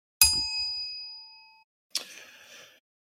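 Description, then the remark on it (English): A timer gives a single bright, metallic ding that rings out and slowly fades over about a second and a half, followed by a brief rattling clatter. No one speaks. “Set my timer. There we go.”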